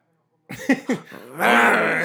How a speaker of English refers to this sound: Start barking. They're growling. Honestly, they're both growling.